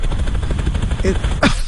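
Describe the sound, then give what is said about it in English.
A voice imitates a helicopter with a rapid, fluttering mouth sound, a steady rotor-like chop lasting about a second and a half, loud, ending in a brief rising whoosh. “Where are the helicopters?”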